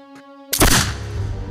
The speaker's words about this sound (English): As we hear the gunshot.